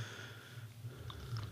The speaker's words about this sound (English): Takes a long sip of coffee.